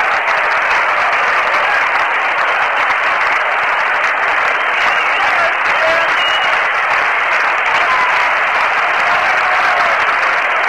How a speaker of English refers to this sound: Well, the crowd here at Shea is starting to stir around, and a line drive base hit to left center field by Kenny Boswell.